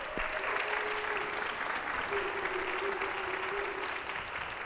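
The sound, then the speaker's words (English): A crowd applauds the worship team and AV team, dense clapping filling the whole stretch at an even loudness, with a faint sustained tone and a few whoops mixed in. “I know most of our worship team have already walked to their seats, but we need to give them and our AV team a round of applause.”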